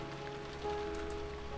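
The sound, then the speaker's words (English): Steady rain drums on the roof of a shanty in a continuous, even patter, moderately loud, with a faint tonal hum beneath and no voices. “Abby and Sonny continued to talk and drink tea as the rain drummed on the roof of the shanty.”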